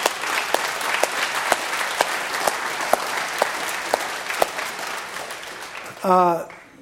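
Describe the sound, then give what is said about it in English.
A church audience applauds the Lord in a dense, steady wash of clapping with a few sharper claps popping out, sustained for about six seconds before a voice begins speaking at the very end. “So you guys are nuts, and you should applaud the Lord in you.”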